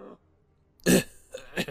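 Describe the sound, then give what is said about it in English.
A sick man's harsh cough bursts out, followed by two shorter rough hacks and throaty clearing sounds in a brief, uneven fit as phlegm breaks loose, with no talking. “He punctuates the sentence with a coughing fit.”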